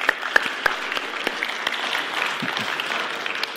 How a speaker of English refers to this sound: But can I just have us just a little clap?